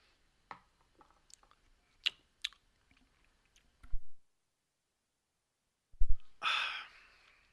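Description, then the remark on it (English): Someone drinks water: scattered small clicks and taps from handling a container, a soft low thump, a quiet pause, then another thump and a loud breathy exhale after swallowing. “I need some water. Hold on.”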